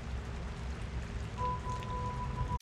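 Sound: rain falling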